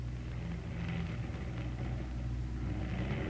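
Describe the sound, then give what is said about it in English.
A steady, low aircraft engine drone with a rough, droning hum, holding at a constant level throughout, with no voices; a damaged plane called the Coffin, with one motor out, coming in for a crash landing. “listen. Somebody's coming in. Trying to, you mean?”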